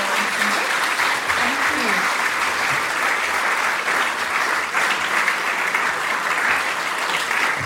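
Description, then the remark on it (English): Sustained applause from an audience at a library event, thanking the guest speaker, a dense, steady wash of clapping that stays loud and even throughout without breaks, with faint murmurs of voices mixed underneath. “We'll give him a big round of applause and send him down back.”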